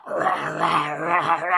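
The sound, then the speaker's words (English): A young, hungry lion roars as it jumps out to attack, a single loud, sustained snarl lasting over a second, its rough growling tone wavering in pitch throughout with nothing else heard alongside it. “He's doing his own thing when all of a sudden, roar, out of the bushes, it says a young lion starts to jump on him and roar, and his big claws come out.”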